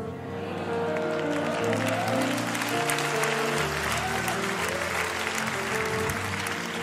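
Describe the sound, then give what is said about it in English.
An audience claps steadily throughout, the married people in it applauding a remark about 40 years of marriage; a dense, sustained wash of applause with a low murmur of voices underneath, holding at an even, fairly loud level. “That's the married people clapping right there.”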